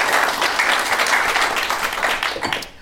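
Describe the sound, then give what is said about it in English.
An audience applauds for Al Murray with dense, steady clapping that stays loud for nearly three seconds before easing off slightly at the end, with no one talking over it. “So a round of applause for Al.”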